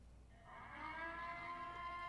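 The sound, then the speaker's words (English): An Ember Alert emergency siren sounds a sustained, buzzy harmonic wail that swells in after a brief quiet start and holds at a fairly steady pitch, with no one talking over it. “That's the Ember Alert.”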